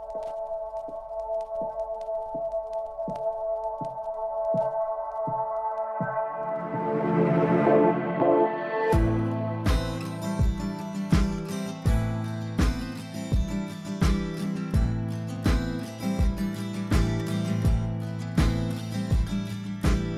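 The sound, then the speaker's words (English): An instrumental music intro: sustained tones over a steady ticking pulse swell into a rising build, then a full band with a strong, regular beat kicks in and continues. “And it's a song to reflect, I guess, reflections on the fact that the stories that we know and love will change.”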